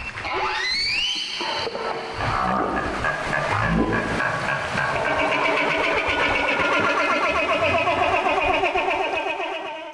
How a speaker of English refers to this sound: That was a social call from a humpback whale that's involved in a feeding behavior called bubble netting.